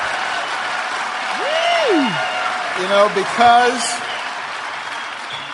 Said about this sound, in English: I mean, I still believe that marriage is between a man and a woman. They're cheering it.